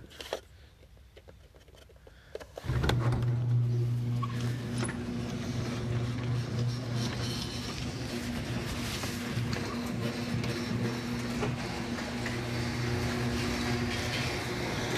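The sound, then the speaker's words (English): After a few quiet seconds with faint clicks, a closed garage door starts opening: a loud, steady motorized drone with a low hum and rattling that continues without pause to the end. “The garage is closed, so I'm gonna open the garage door.”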